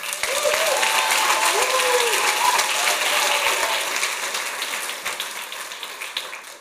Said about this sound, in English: Everybody stand now. Give God, clap your hands and give God glory.